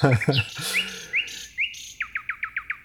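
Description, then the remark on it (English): A nightingale sings clear, moving through varied whistled and buzzy phrases before a run of about eight identical sharp notes repeated in a quick, steady rhythm. “There are birds called nightingales, but it's a very much a European and Eurasian bird.”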